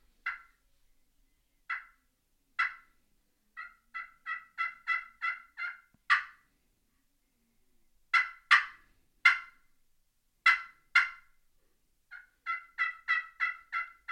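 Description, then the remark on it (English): Sharp turkey clucks and rapid cuts played on a Hooks Boss hand turkey call, imitating a turkey: single pops, then quick bursts of four to eight, loud with no other sound. “Just because I believe the cluck is so natural. That's something that turkeys do so much of.”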